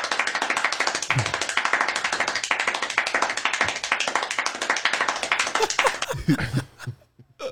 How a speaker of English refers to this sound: Give us a little round of applause.